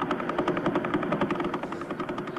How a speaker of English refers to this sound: The sound of a Vela pulsar spinning.